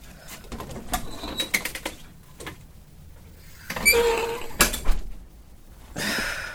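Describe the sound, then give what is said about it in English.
A front door is opened: a series of light clicks and rattles from the latch and handle, then a louder clunk and a rushing, scraping sweep as it swings. No voices. “I need you to wait until I'm in the booth before you open the front door.”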